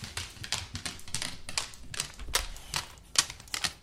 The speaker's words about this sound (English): It's a dog walking on a hard floor, believe it or not.